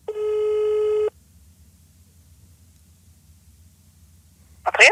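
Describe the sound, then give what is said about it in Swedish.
A single steady electronic ringback tone of about one second, as heard when placing a phone call, followed by a quiet pause with faint line hum and a brief click near the end. “Så, vi ringer upp en liten Therese. Mm-hmm. Hoppas hon svarar då.”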